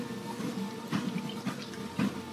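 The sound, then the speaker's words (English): Someone takes a drink of water: soft liquid sounds and three brief gulping bursts about half a second apart, quiet and with no talking. “I'll take some water.”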